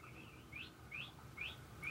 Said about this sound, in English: Sound of the birds.